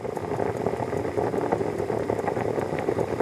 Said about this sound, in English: That was water boiling.